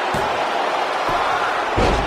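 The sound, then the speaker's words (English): A wrestler is slammed onto the mat by a German suplex with a heavy, booming thud near the end, after a couple of lighter thumps, all over a steady roar of crowd noise. “Tony Nese throws the chair away. German suplex.”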